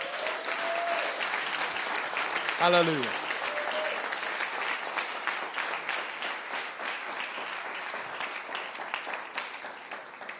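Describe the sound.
A large crowd applauds steadily for about ten seconds, a dense, even wash of clapping, while a voice briefly calls out over it near the start.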